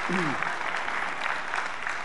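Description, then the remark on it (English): A crowd claps steadily in a dense, even wash of applause, with a brief voice at the start sliding through a short pitched phrase before the clapping carries on alone. “Could you please give Mike a round of applause to encourage to do this?”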